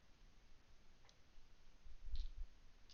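A quiet, brief clatter of dice being rolled: a single soft click, then a small cluster of light taps and a dull thump as they settle. No voices.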